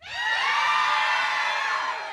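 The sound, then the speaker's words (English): A group of voices cheers together into a voicemail message in one sustained burst of high, overlapping shouts and whoops, loud and steady for about two seconds with no distinct words. “Like cheer.”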